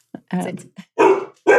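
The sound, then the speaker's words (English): The dog Susie, playing with and squeezing her toy dog bone, lets out three loud, rough barking bursts in quick succession, with short gaps between them and a growly edge to the sound. “Like, look, Susie's living it up with her toy.”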